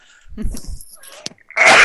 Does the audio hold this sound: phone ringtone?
no